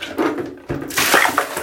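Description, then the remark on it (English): Water sloshes and splashes in a bathtub, with a couple of bursts of noisy splashing and dripping rather than a single clean splash. No one speaks. “And we end with a splash.”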